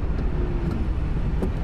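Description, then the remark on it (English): Steady low road rumble from inside a moving car in the middle of town, with a faint electric-sounding whine that drifts downward in pitch as the car slows after the driver takes his foot off the accelerator. No one speaks. “It goes, ooh, it slows down like some sort of future car.”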